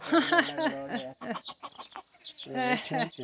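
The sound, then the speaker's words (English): Hens cluck in busy, throaty bursts, a run of short choppy calls in the middle before louder drawn-out clucking picks up again. “Put in the cage the two big hens that always eat all the freaking eggs.”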